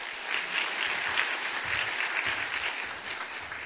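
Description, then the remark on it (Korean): A church audience applauds to welcome a guest pastor, co-representative of Connect Korea Together, with sustained applause, a dense, steady wash of many hands clapping at an even level for several seconds, with no voices heard over it. “우리 박수하며 환영하겠습니다.”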